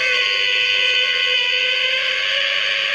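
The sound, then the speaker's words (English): An alarm clock rings with a steady, loud electronic tone that holds unbroken for about three seconds, with no voices over it. “So set your … alarm clock.”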